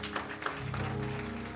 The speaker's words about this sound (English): Clap those hands for victory.